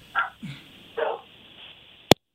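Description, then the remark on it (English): Dogs that have got loose bark a few times in the background, three short, thin barks spaced unevenly over a steady background hiss, ending with a sharp click. “We heard the dogs barking in the background.”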